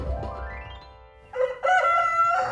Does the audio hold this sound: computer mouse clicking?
no